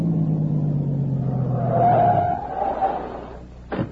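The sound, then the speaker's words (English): A car engine idles with a steady, low rumble, then winds down and cuts out about halfway through as the car stops at a cave entrance where the road dead ends, leaving quiet and a brief sharp knock at the end. “There's a car. It stopped.”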